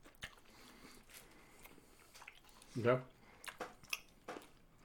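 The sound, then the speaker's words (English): Crunchy chewing of a hard candy: scattered bites and cracks at an irregular pace, with one louder, fuller crunch near the middle and sharp clicks after it. “Are you swallowing it whole? I get into like a smaller pieces, and I swallow.”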